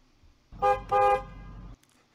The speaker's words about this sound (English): Yeah. Honking the horn, baby.